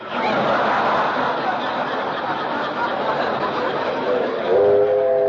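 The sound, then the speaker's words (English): A steady, loud rumbling roar of a passing train, the 419, arriving on time, fills the whole stretch, and near the end a train whistle sounds with a sustained, slightly louder tone. “Didn't I hear a train?”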